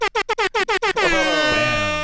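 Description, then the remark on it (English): A loud air horn blares in a rapid series of about seven short staccato blasts, then holds one long sustained honk to the end. No voices are heard. “Let me hit him with the air horn.”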